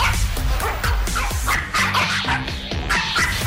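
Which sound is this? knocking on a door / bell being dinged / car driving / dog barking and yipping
dog barking and yipping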